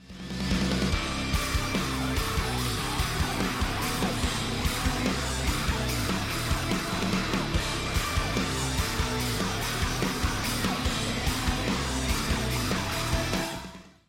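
A loud, dense rock song plays throughout, with heavy driving drums and distorted guitars under harsh screamed vocals, including repeated cries of "help", cutting off abruptly at the end.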